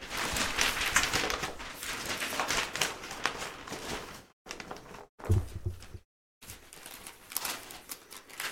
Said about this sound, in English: This might be the best present I've ever wrapped. And like, maybe it's three pieces of tape. Well, it's also the perfect size paper.